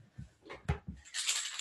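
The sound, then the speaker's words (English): A few soft handling knocks and clinks, then a bright metallic jingle of loose coins, including pennies from a wallet, shaken together as they are put into a jar, fairly loud, with no talking. “Got a little bit more full, and I think I have some pennies and some coins.”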